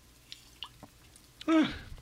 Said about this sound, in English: Pardon me. I yawned.